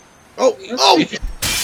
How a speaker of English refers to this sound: You okay? It's all over the place. Oh, goody. Well, now there's broken glass anyway.